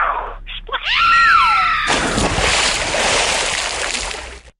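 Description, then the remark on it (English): A wavering, descending whistle-like wail gives way to a sudden, loud splash of water as a yellow whale lands right next to someone, sending a little wave all over him; the water rushes and churns steadily for a couple of seconds before cutting off. “You'll be able to wake him up with a good splash of water as you land in next to him.”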